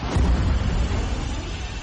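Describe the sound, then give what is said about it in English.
A loud, deep explosion blast from an eruption, its booming low rumble rolling on steadily for a couple of seconds with a broad roar of noise, and no voices; the sound takes about 22 minutes to be heard in Salt Lake City. “It takes about 22 minutes before the sound of the explosion is heard in Salt Lake City.”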